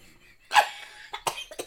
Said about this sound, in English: Away she goes, coughing again.